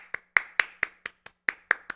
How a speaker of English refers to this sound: We needed that round of applause, especially after the start of this year.